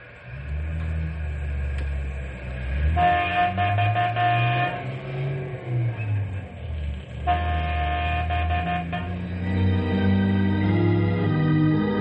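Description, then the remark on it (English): A deep, steady rumble of a heavy train runs throughout, broken by two long, loud horn blasts, the second starting a few seconds after the first ends, with the engine noise swelling near the end. “Hey, they're breaking open the train now.”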